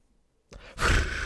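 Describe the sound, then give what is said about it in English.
A voice imitates a pigeon flying away with a breathy, rushing whoosh that starts softly, then swells louder and holds for under a second. No talking is heard. “That's me flying away.”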